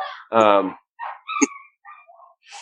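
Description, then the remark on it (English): A dog, probably reacting to the mail carrier, lets out a loud bark, followed by a few quieter, shorter yelps and noises, with people talking around it. “That dog's freaking the fuck out.”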